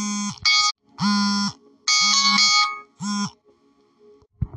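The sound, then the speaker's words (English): A loud electronic alarm sounds in repeated harsh buzzing bursts, about five pulses with short gaps between them, dominant, cut off abruptly near the end. “That alarm was for next week.”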